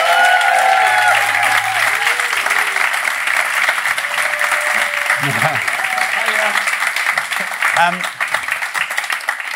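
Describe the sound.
A large audience breaks into loud, sustained applause for a volunteer invited to come up, a dense wash of clapping that holds steady for the whole stretch, with a few brief voices and cheers rising through it.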